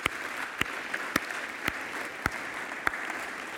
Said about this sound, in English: This year, we gave a little over $34,000 to missions, and I think that deserves a round of applause because that's important.